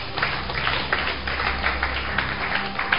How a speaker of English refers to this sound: So, let's clap for this young man. Clap for him.